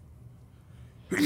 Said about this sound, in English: Bless you. Thank you.